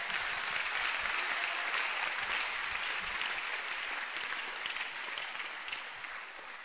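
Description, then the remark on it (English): An audience claps in praise of the Lord, a dense, steady wash of many hands applauding at once, loud and sustained with no talking, tapering slightly toward the end. “Give the Lord a wonderful clap of praise.”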